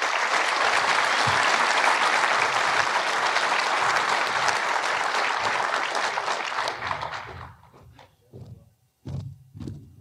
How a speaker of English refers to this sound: So please, a round of applause for Daniel McAdams.